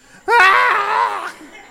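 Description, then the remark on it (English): A loud, high-pitched scream from one of three children in a car bursts out suddenly and holds for about a second, wavering before trailing off, with no talking around it. “Now let's go 6 years ahead, the same couple, 3 screaming children.”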